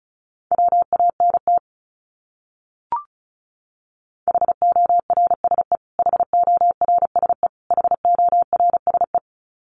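Rapid Morse code beeps at 35 words per minute sending a word, on a single steady mid-pitched tone, keyed in quick bursts of dots and dashes with short pauses between groups and one brief click in a gap.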